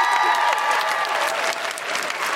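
A crowd claps loudly and steadily, a dense wash of many hands that stays strong throughout, with a few voices faintly audible beneath the applause.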